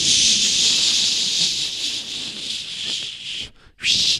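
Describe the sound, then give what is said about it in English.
A long, steady aerosol spray hisses for a few seconds, pauses briefly, then gives one more short, sharp burst. The sound is a bright, loud, breathy hiss with no voices. “Your can of de-religification spray is under your chair, right? Let's just pick that up and spray ourselves a little bit.”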